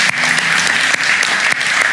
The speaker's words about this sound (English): And we here at 10 a.m. are equally excited. So we're going to give you a round of applause just to show how much we're excited.